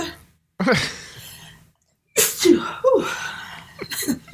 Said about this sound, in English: I'm making one point for every three of your sneezes.